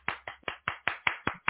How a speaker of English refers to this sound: If I could find the clapping button, I would do it. I'll clap for you.